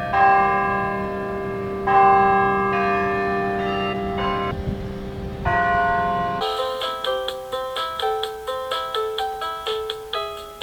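Church bells ring out loudly, first a few slow, resonant tolls that linger and overlap, then a quicker, steady peal of brighter chimes struck in rapid succession. No voices.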